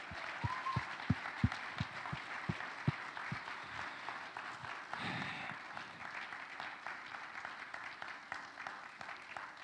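An audience applauds together, a dense, steady wash of many hands clapping at moderate loudness, with a few sharper individual claps standing out early on and no speech over it.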